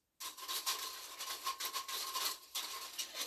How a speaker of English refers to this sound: Quit playing with the damn blinds, you fucker. Shaking the fucking blinds like the Ultimate Warrior shaking the fucking ring ropes.